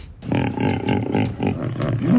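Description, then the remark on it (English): A hippopotamus lets out a loud grunting roar, a rough throaty bellow that pulses for about two seconds with no voices around it. “C, a hippo? Hippo. Oh, man!”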